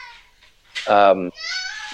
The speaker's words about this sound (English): You hear the screaming in the background? That is what happens when you have kids.